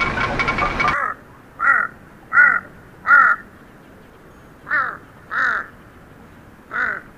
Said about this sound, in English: A huge Tibetan crow. I remember being startled by the bizarre sounds made by a huge Tibetan crow hopping across a high field.